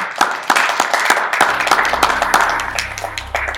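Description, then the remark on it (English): A small audience claps steadily for a few seconds after a gallery talk, recorded in an art gallery at St. Ambrose University in Davenport, Iowa; a dense patter of hands at moderate loudness, with a faint low hum underneath and no one speaking. “We really appreciate you coming and talking about your work, and let's give her a round of applause.”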